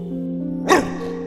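A single short, sharp dog bark rings out once against a steady low humming drone, clear, with no other barks following.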